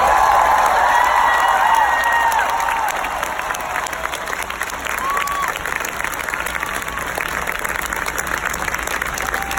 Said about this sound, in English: Everyone who have been organizing, all the local organizers who are here, we'll give them an applause.